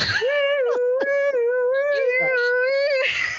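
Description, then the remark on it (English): Several voices imitate an ambulance siren as they run, with a loud, sustained wailing tone that holds a fairly steady pitch, wavering only slightly, for about three seconds before breaking off. “They all make the ambulance noise as they run.”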